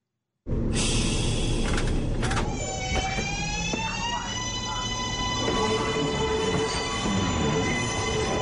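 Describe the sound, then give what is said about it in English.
A New York City subway train rumbles loudly along the tracks, a steady roar layered with high, sustained metallic whining and screeching tones that hold for several seconds. No one speaks. “When the trains are moving, there's no better way to get around New York City than on the subway.”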